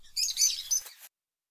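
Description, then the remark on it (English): A quick burst of birds twittering outside, high and busy chirps tumbling over each other for about a second before stopping, moderately soft with no voices. “A brief, airy space flecked with my scrubbing brush and birds twittering outside.”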